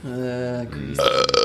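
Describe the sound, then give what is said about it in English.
A long, loud burp with a low droning tone that rises into a raspier, brighter finish, heard alone with no talking over it. “Burp count sponsored still by Coke.”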